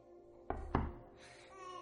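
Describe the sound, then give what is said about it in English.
Two heavy knocks on a door land in quick succession, solid with a deep thud, followed by a quiet stretch of room tone. “If you don't answer me this instant, I'm gonna go get Michael to break down this door”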